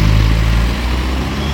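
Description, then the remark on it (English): A heavy city bus engine rumbles, a deep, steady low drone that shifts slightly in pitch as the bus rolls in and slows at the stop, with no voices over it. “Here's a bus. This is my bus coming up.”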